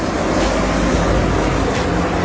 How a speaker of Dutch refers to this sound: Excuseer voor de geluidsoverlast. Mijn excuses voor de geluidsoverlast. Het is hier echt zeer winderig en zeer lawaaierig. Ik ben aan het opnemen aan de rand van een grote baan, aan de hand van een grote weg.